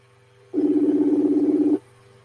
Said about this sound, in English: Can you hear the phone ringing?